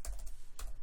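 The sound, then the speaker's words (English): Crisp clicks of typing with one hand on a laptop keyboard, a handful of keystrokes in an uneven, unhurried rhythm with a brief pause midway, no voices. “I'm typing this with one hand.”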